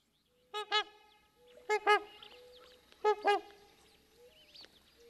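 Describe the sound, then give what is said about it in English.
Loud, brassy trumpeter swan calls, from a single bird or maybe two, sound in three paired bursts, each a double honk with rich harmonics, spaced about a second apart. Softer calling lingers between them, with no voices. “that anybody who's ever heard a trumpet or swan doesn't have to ask why they're called trumpet or swans.”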